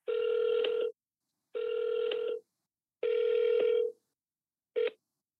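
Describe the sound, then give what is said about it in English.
Ringback tone of an outgoing phone call to the owner of a house for sale on Cherry Street in Kalamazoo: three clear, steady buzzing rings about a second long with short gaps, then a fourth cut off abruptly. No voices. “I'm calling about your house on Cherry Street in Kalamazoo.”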